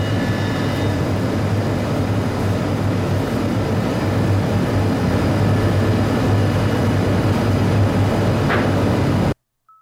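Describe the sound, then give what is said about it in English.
An air conditioner running with a loud, steady, low rumbling drone that holds constant throughout, a faint brief click near the end, then the sound cuts off abruptly. No one speaks. “So you're going to hear the AC turn on.”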